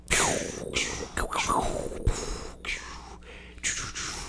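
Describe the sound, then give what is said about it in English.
Several voices imitate lightning with loud, breathy hissing and crackling bursts, some sweeping downward in pitch, overlapping one another in a rapid, uneven series for about four seconds. “Everyone made lightning noise.”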